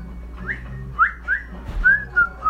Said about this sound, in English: Yeah, whistle.